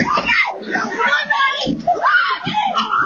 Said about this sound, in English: Did you hear that? Screaming.